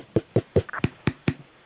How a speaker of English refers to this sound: Hey, who's that in the background? Is somebody knocking?